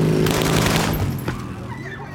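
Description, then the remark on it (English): A rapid burst of gunshots cracks over a steady, droning motorcycle engine during a drive-by shooting on the streets of Medellín, Griselda Blanco's signature assassination method. The firing stops after about a second while the engine hum carries on, slowly fading. “On the streets of Medellin, Blanco develops what becomes her signature method of assassination, the motorcycle drive-by shooting.”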